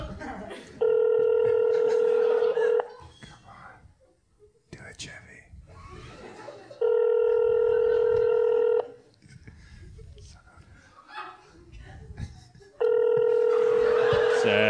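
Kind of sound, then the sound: signal or alarm, telephone call ringing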